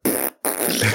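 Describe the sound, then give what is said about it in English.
A loud fart sound in two quick bursts separated by a brief pause, each one buzzy and sputtering, with no talking over it. “Farted with …. Let's go. Best fart on the radio.”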